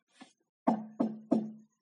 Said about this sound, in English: Now, the wolf came to the goat's house for the third time and knocked.